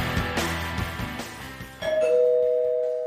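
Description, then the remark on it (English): Background music fades under a two-tone doorbell chime, a bright higher note followed by a lower one that rings out and slowly decays. Nobody speaks. “Someone's at the door.”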